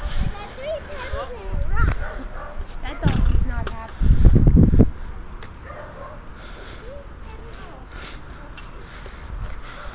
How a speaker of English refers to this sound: There's a poodle at a window barking at us, and there's another one in the garage we can't see.